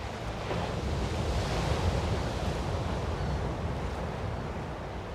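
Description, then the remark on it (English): Pacific Ocean surf washing onto a secluded beach at Big Sur on the Central California coast in a steady, full roar that swells slightly and then settles, with faint wind noise, some barking sea lions and no voices. “The mesmerizing sounds of the Pacific at Big Sur.”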